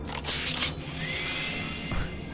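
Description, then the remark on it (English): A power drill whirs: a brief harsh burst, then a steady motor whine that rises slightly in pitch before cutting off. No one speaks. “He had a power drill.”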